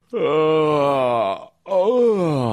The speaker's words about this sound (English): Oh, my. Oh, what a yawn. You ever yawn so long a hot dog flies in your mouth?